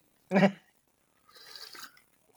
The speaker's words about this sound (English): Who's mixing a drink out there? I hear I'm drinking a little Coke sip here with a little grenadine.